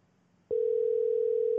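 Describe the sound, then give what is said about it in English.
After a half-second of near silence, a phone dial tone for an outgoing call switches on abruptly and holds as a loud, steady, unbroken hum, clear, with no voices. “Yeah, let's give him a call.”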